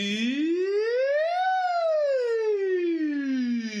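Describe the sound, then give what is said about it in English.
A single voice glides smoothly upward in pitch, peaks, then slides slowly back down in one continuous siren-like sweep as a vocal warm-up, sung alone, steady in loudness. “If you don't have the ability to listen to scales, and you might be in a position where you want to be doing some sirens, just some glides up and down.”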